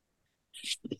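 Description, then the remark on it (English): After half a second of quiet, a single sneeze bursts out as a sharp, hissing rush of breath, followed by a couple of short, low vocal sounds. “I'm getting ready to sneeze, sorry. Or I did sneeze.”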